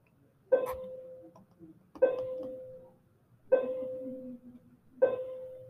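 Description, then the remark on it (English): A bell strikes four times at an even, unhurried pace, each chime opening with a bright clang and settling into a steady mid-pitched ring that fades before the next. “I know y'all love that bell.”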